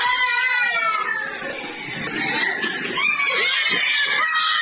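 Young children at a daycare in Mississippi screaming and crying in fright as workers wearing scream masks run around and grab them; several high voices overlapping in a loud, continuous shrill chorus, with no clear words.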